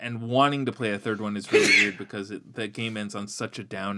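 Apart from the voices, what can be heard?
sneeze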